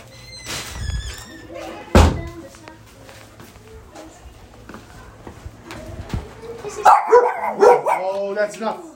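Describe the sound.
A dog barks in a few short, loud bursts, with a sharp thump early on and a cluster of yappy barks near the end, over muffled background talking.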